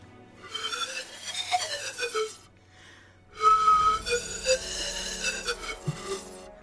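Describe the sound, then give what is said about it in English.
A person whistles a bright, warbling tune in two short phrases separated by a brief pause, with a slightly wobbly, playful pitch. It is clear, and no one speaks. “And as you attempt to whistle them into a charm, what is the saving throw?”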